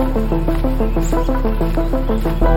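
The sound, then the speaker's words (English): Chickens clucking outdoors in a steady, rapid rhythm, each cluck short and repeated many times at a fairly loud level with no talking. “Birds are out.”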